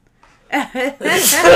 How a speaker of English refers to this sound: I gotta sneeze.